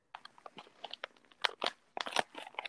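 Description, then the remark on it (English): Crisp, irregular crinkling and rustling of glittery macaron wrapping paper being unwrapped from a Galentine gift after the ribbon is removed, with a few louder crackling bursts among softer scratchy handling noises and no voices. “All right, the ribbon is off, and I'm trying to preserve the paper because I learned how to make bows out of wrapping paper since I can't recycle most of it.”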